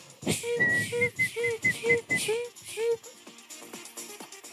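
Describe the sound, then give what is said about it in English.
A rapid series of about seven short, shrill whistle blasts in a steady rhythm, loud, over a busy noisy background, then fading into quieter clatter. “I was saying everybody in the 90s had a whistle.”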